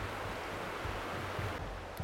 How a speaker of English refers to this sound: Yeah, so Barnes Creek is a nice natural free-flowing creek. Drains on down into the lake and on out to the strait. Just beautiful, surrounded by all this old growth forest.